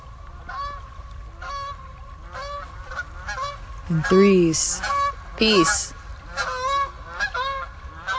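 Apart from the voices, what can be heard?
geese honking overhead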